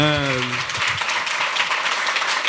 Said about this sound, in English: I got sober in July of last year, which is like 9 months next week. Please clap. That's amazing.